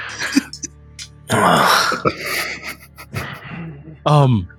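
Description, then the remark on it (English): Someone imitates a cat coughing up a hairball: a harsh, raspy hacking burst, a few choppy gagging sounds, then a short voiced retch at the end. “Did Alabaster just cough up a hairball?”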